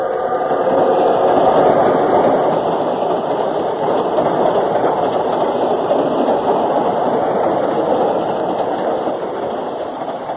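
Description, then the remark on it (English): A train rumbles steadily along the rails with a continuous rattling clatter, loud, holding an even roar for the whole stretch while the train is still moving. “Let's get off while the train's still moving.”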